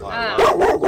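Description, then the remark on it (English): A dog barks loudly, a rapid run of three or four harsh barks that follows a brief high whine. “Now she's setting off all the dogs.”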